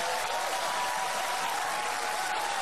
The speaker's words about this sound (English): Okay, so notice everybody claps like seals right there. It's important.